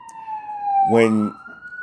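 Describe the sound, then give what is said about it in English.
An emergency vehicle siren in the neighborhood wails steadily in the background with a gliding, slightly falling pitch as it passes, while a voice briefly speaks over it midway. “Don't mind the siren in the background.”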